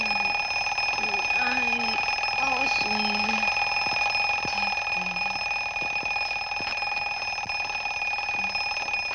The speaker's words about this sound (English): As the time bomb ticks during her wedding with Superman, the alarm clock rings in Lois's bedroom.